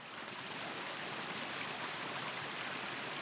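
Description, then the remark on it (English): A babbling brook flows steadily, its water gurgling in a dense, continuous wash with no pauses, even in level throughout. “It was not long before they came to a little brook.”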